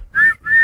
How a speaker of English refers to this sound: Blow the whistle, then.